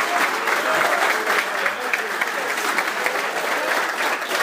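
A crowd claps steadily in dense, continuous applause that holds at an even, fairly loud level throughout, with no voices standing out, for a senior left tackle football player being recognized for high character, community service and student leadership.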